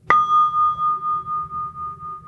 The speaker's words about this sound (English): And with the first sound of the bell, I want you to become one with the bell and the sound. Bring your attention back to this present moment, fully awake and aware.